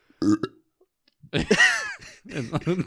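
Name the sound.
belch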